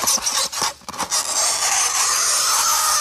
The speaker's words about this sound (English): Oh, that makes me curl my toes. I know. I just can't deal. Especially like a marker or something, like kind of makes that squeakiness. Squeaky sound.